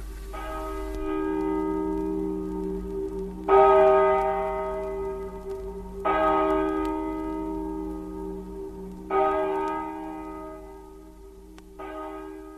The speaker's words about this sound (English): Yet we'll never hear our own funeral bell.